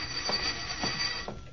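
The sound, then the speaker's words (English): A telephone bell rings in a steady, continuous metallic trill with bright sustained overtones and a few faint pulses, muffled and thin like an old recording, with no voices. “So I stared out the window for a while, wondering how to bake a cake with the dynamite charge when the phone rang.”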